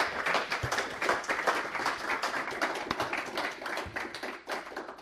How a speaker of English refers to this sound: Please give him a warm round of applause to welcome him.